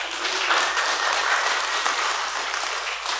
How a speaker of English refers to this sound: That's worth celebrating, amen? So you can give those people a round of applause.